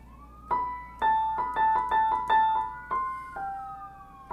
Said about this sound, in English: Wow, that's a lot of fucking sirens. I don't know if you hear that.